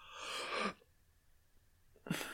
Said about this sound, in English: I had to change the entire way I yawn for exactly this reason.